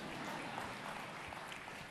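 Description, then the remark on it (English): An audience claps in a steady, dense patter of many hands, holding an even, moderate level throughout the short stretch with no voices over it. “And that's, you can clap, she's awesome.”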